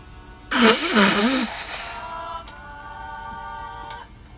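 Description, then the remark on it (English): A single loud, roughly one-second nose blow: a breathy, rushing blast with a wavering honk running through it, followed by a faint, steady hum. “Oof, gotta blow my nose again.”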